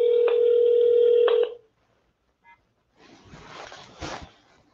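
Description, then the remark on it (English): A steady electronic telephone tone sounds for about a second and a half, followed by a quiet pause, a single brief beep, then a burst of crackly line noise as an outgoing call to a caller with a question connects. “Got to ring them up.”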